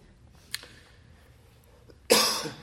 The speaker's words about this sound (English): My apologies, I still get a little cough after this illness.